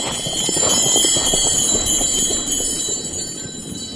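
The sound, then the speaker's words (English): Horse harness bells, fitted on the back pad of a driving harness, shaken gently: a steady bright jingling and ringing that carries on for several seconds, fairly loud, with soft clinking movement underneath and no talking. “Just move them gently. Let the people hear that sound.”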